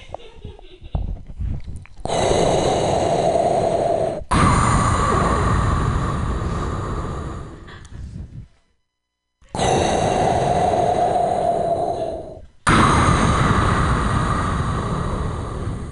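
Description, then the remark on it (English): A voice does an impersonation of heavy, masked respirator breathing before pretending to smoke weed: two slow cycles of long, raspy, hissing inhales and exhales, loud, with a brief pause between cycles and no talking. “He's not smoking yet, he's just breathing.”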